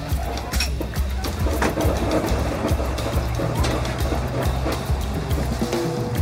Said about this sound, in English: The bus seems to circle around and around, and by 6:30, when the entire bus is empty, you're back where you started, the bus stop.